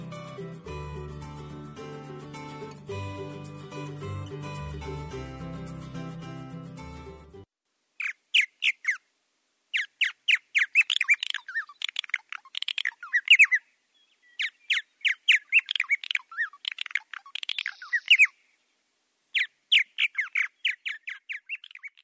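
Some music plays, then stops, and a bird calls alone in bright, rapid bursts of chirps and squawks, repeating in short clusters with brief pauses between them.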